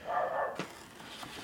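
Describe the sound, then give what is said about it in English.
A dog at a house, barking at people walking by, lets out one drawn-out, fairly loud bark lasting about half a second, followed by a brief sharp yip. Quieter background noise fills the rest, with no talking. “And I need treats, and I'm going to bark at the people walking by the house.”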